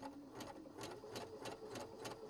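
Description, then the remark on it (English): A sewing machine fitted with an edge joining foot runs steadily on a wide zigzag stitch, sewing through Annie Soft and Stable, a continuous motor hum punctuated by regular bright ticks of the needle about three times a second. No one speaks. “And you hear it just humming along.”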